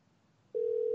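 A steady, loud telephone ringing tone for an outgoing call to Frank Lucatardo, a friend who never answers the phone, begins about halfway through and holds a single even pitch to the end, with quiet background before it and no voices.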